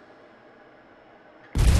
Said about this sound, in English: Sorry, that was a delayed explosion. I couldn't find the right button for that one.